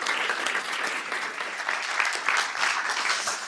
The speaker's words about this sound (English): Round of applause